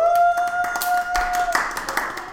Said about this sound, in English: And he gestures to Gregor, who kind of steps forward wearing a suit of armor. And the crowd erupts and cheers.